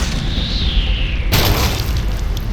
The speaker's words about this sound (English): A hunk of cement the size of a bowling ball drops from above.